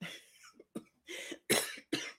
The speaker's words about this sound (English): I'm still getting over my little cough, but it's a lot better.